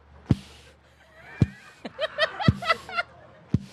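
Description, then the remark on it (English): The Philly Phanatic mascot squeaks into a microphone: a run of high, nasal squeaks and honks rises and falls in pitch, punctuated by four sharp, loud thumps spaced about a second apart, like something bumping the microphone. “Can he squeak? He needs a vessel.”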